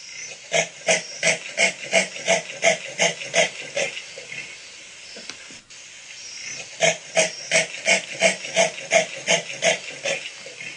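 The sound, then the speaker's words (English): A common leopard's sawing roar: two long runs of rasping, evenly spaced grunts, each a harsh breathy pulse like a saw stroke, with a brief pause between the bouts. Loud and alone, no talking. “So here's a common leopard vocalization to give you a little bit of an idea of what this sawing is.”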